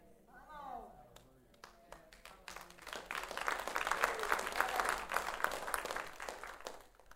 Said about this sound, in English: But by the way, that was a pitiful clap.